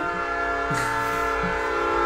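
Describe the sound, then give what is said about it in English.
A loud, sustained train horn blares steadily, its rich stacked tones holding for about two seconds with a brief swell partway through. No one speaks. “Train time. Train time. Bam! Welcome to the train segment of the podcast.”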